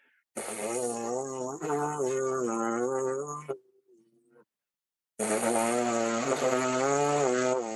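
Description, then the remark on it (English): A brass player's free lip buzz, loud: two sustained, reedy buzzing tones with slightly wavering pitch, separated by a brief near-silent pause with a faint low hum. “Sometimes that free buzz doesn't work for them, right?”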